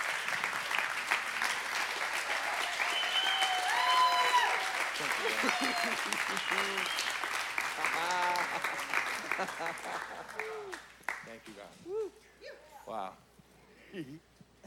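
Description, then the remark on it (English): Audience applause, a dense, steady wash of clapping for about ten seconds, then fades while a man begins speaking over the last scattered claps. “So can we just give an applause?”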